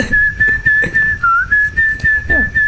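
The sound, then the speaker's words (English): Someone whistles a short tune, holding a mostly steady high pitch that briefly dips, pulsing in repeated beats over a low rumbling background. “You're whistling in the upcoming song.”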